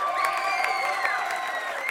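A comedy show audience applauds loudly to welcome the next act, dense clapping mixed with cheers and whoops that rise in pitch over the top, sustained at an even level throughout.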